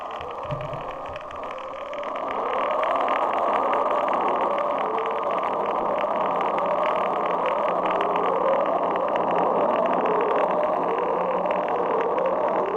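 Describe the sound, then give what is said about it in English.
An unidentified ocean sound called upsweep, picked up by National Oceanic and Atmospheric Administration hydrophones: a steady underwater hiss and rumble carries a repeating series of faint, rising tonal sweeps, each lasting about a second, continuing without pause after a quieter opening. “That one is called upsweep. And that's another unidentified sound detected by the National Oceanic and Atmospheric Administration.”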